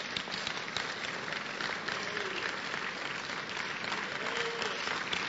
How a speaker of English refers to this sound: Clap for Jesus.